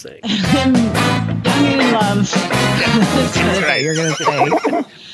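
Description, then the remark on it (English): A loud, drawn-out horse whinny rises and falls in pitch, ending in a shaky, fluttering trill. It stands alone with no talking over it. “My daily Winnie goes to, are you sitting down”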